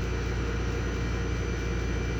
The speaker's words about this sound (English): I can hear that air conditioning unit next to me, but whatever. Not, yeah, it's, yeah, it's Florida in March. Air conditioning.